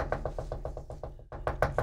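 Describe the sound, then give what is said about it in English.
A rapid, steady series of about a dozen knocks on a tour bus door, fairly loud, with a low engine-like rumble underneath and no talking. “He finds her. He knocks.”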